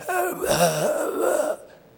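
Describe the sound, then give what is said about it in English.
A single drawn-out, strained breath voiced by a person imitating the wheeze of someone whose breathing is impaired by leprosy, rasping and slightly tonal, lasting about a second and a half before cutting off into quiet. “And from that leprosy, it impacted their breathing. And it always wheezes out.”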